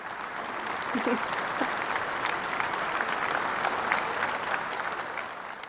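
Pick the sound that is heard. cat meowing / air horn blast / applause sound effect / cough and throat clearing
applause sound effect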